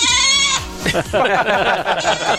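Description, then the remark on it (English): A goat lets out one loud, quavering bleat, and a man's voice immediately starts talking over its tail end. “O'Shea's open mic with a goat with a goat and friends.”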